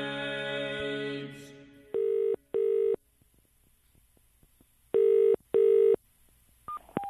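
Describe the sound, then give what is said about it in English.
Telephone tones before a call to London connects: a steady buzzing tone gives way to two double-beat electronic rings, clear through the line, ending with a couple of short beeps. “Hello, we're recording the sounds of London through the telephone.”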